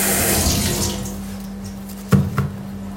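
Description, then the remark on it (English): Running tap water hisses steadily, then tapers off, followed by two short splashy knocks as bell peppers are handled under the stream, all over a steady low hum. “Just rinsing off the bell peppers.”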